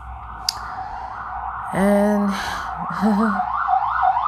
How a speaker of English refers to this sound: the sirens don't stop here in New York whatsoever.